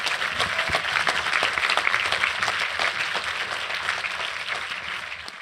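Sustained audience applause fills the room, a dense wash of many hands clapping steadily at a strong, even level for several seconds before easing slightly at the end.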